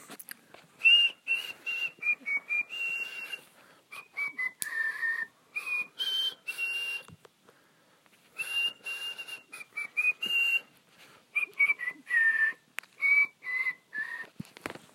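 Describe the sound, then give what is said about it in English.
A person with a sore throat whistles a wavering melody in two long phrases separated by a brief pause, the tone sliding between pitches with breathy, uneven notes. “I've got kind of a sore throat today, and for some reason that makes it hard to whistle.”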